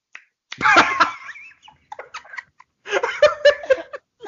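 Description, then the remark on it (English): A voice mimics the wet, smacking noises of someone chewing their own tongue during sex, with clicky mouth sounds in two loud bursts separated by a brief pause of scattered smacks. “My ex broke up with me for chewing my tongue during sex.”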